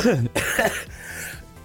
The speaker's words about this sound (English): And I've still got a cold and cough.